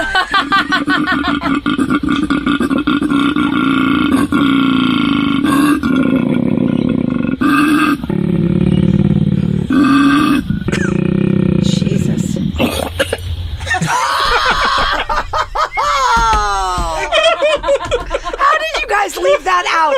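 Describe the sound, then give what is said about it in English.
A male koala's deep, rasping mating bellow: long rhythmic snoring grunts and belch-like roars that rise into strained, higher wheezing cries, ending in a sputtering, choking gasp. “Well, the actual video is titled "Koala Chokes on His Mating Call."”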